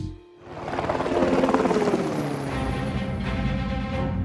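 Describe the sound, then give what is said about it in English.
The engine of Bruce, a fast airplane, powers up for takeoff on a mission to deliver a special battery to Champ City. It makes a loud throbbing roar that swells in after a brief lull and holds steady, with a rhythmic low pulse underneath. “All right, Bruce, you're all set for takeoff.”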